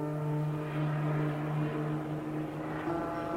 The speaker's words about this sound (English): In the dark night, the captain hears and then sees a helicopter with its landing lights on, flying over the ship, hovering over the landing pad.